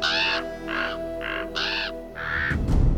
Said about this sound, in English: He left them to their revels to find Odin at the window behind his throne, looking out over the cosmos. The ravens Hugin and Munin squawked on his shoulders.